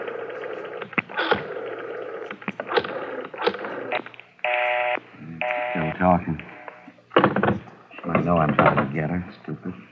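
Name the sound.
telephone being dialed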